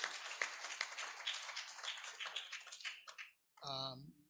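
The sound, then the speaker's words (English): An audience gives everybody, including the dads present, a hand clap, a dense, steady wash of hand clapping that fades out after about three seconds before a single voice starts speaking. “Let's give everybody a hand clap again.”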